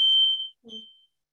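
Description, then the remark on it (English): A smoke alarm blares two shrill, high-pitched electronic tones, a long one followed by a shorter one after a brief pause, with a low murmur under the second. “Used like little steam sets it off.”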